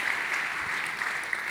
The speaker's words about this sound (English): You're clapping. You're clapping. You're clapping.